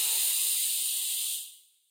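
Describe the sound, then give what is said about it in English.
A smooth, steady breath drawn in through the nose into the belly during a breathing exercise, a soft airy hiss lasting well over a second before tapering off into silence. “So you breathe in from your nose and you breathe into your belly.”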